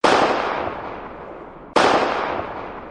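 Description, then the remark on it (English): Two loud gunshots from a hand cannon, a heavy handgun, fired nearly two seconds apart, each a sharp crack followed by a long, booming echo that slowly fades. No voices are heard. “Through my shoulder, down my arm, as my finger closed on the trigger of my third father's cannon. 2 shots.”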